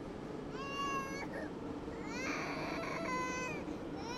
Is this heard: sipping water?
no